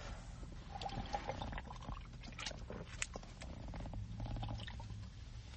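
Wet liquid sounds of someone gulping down the rest of a cold margarita malt beverage steadily for several seconds, with soft sloshing and swallowing noises and no talking.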